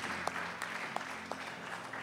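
A crowd applauds steadily, the dense clapping forming a continuous wash of sound with a few sharper individual claps standing out.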